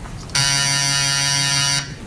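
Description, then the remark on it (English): A single loud, steady electric buzzer sounds for about a second and a half to signal an important phone call, a harsh, raspy, evenly pitched drone that starts and stops abruptly, with no voices. “Then I'm going to buzz that buzzer and tell you you got a real important phone call.”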